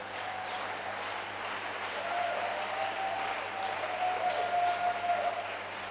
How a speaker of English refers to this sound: Why don't you clap your hands for Jesus?